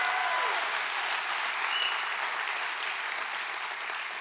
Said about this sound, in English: Why don't you just clap your hands real big and say thank you for the word tonight, Pastor.